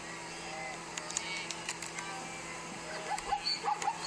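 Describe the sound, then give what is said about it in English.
A zebra call played through a small phone speaker after asking Siri what sound a zebra makes, a run of short, yelping bark-like bursts that grows busier toward the end, thin and fairly quiet against background noise. “He about to play a zebra sound?”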